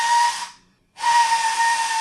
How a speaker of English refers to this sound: Well, that's the shift bell. We better, or the shift whistle. Hope the listener enjoys that sound effect